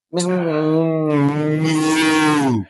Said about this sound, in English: I think cows moo, man. I don't think so. I think they moo because their lips are always together, especially when they chewing.